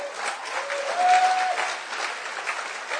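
A crowd claps steadily for a few seconds, a dense, continuous wash of applause at moderate volume with no pauses, and a faint tonal whistle or squeal briefly audible beneath it.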